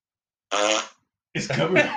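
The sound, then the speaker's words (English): A single loud, buzzy fart from a spouse lying in bed, lasting about half a second and alone, followed after a short pause by someone starting to talk. “They held if in their you fart don't get for your 5 years.”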